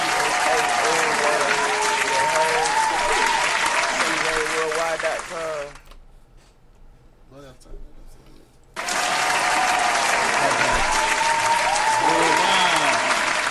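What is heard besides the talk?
applause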